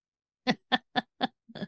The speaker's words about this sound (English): He's coughing.